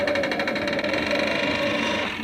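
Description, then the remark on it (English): An unlocked door swings open with a long, strange creak: a steady, whining tone with stacked overtones and a fluttering, rattly texture at the start, holding at an even loudness for about two seconds. “Man, what a weird-sounding door.”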